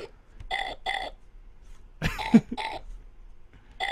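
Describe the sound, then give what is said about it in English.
A burp sound effect from a button on a fart piano sound toy plays repeatedly: about five short, buzzy belches in an uneven rhythm, with one longer, rougher burp in the middle. No one speaks. “Is there a burp button on yeah. there?”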